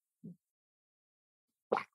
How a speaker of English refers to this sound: So again, sorry, I'm gonna take a sip of water real quick.